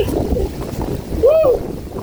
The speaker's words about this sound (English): Woo! I'm from Kansas and it's windy, but it's not usually this windy.